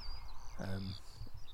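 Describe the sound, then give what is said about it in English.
A red-listed skylark's high, thin song trills and warbles continuously, briefly overlapped midway by a short, low, voice-like harmonic call. “the main songster being red-listed Skylark”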